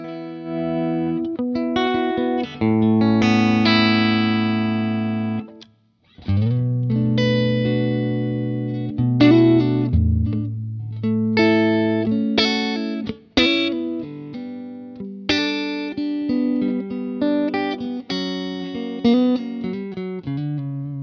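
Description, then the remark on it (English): Clean, chiming electric guitar through a Vox AC15 amp with a Celestion Blue speaker: bright strummed chords and ringing single notes played steadily, with a brief pause partway through and no talking. “So that's the AC15 right there.”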